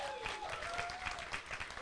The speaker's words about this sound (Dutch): En ik wil hem wel een applaus geven, want ik vind het toch heel knap.